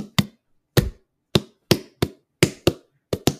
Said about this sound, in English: Welcome to our ASMR channel, slapping melons.